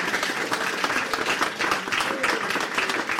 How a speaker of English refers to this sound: Would you like to come up? Can everyone give him a round of applause, please?